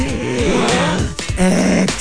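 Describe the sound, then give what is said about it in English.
A person imitates loud, open-mouthed breathing: two raspy, slightly growly breaths in quick succession, with no words spoken. “Like when they breathe through the mouth.”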